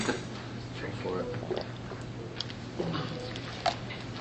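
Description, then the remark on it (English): Water is poured into a glass and then sipped, with soft trickling, a few faint gulps and small clinks over a steady low background hum, fairly quiet. “That is living water, because now all of a sudden my throat is working a little bit better.”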